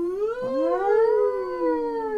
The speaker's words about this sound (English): What happens? World War III starts tomorrow? It's like, do they get them weird sirens that they've got in the old time?